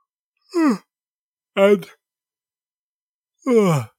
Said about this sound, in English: I don't know why I'm yawning so much, though.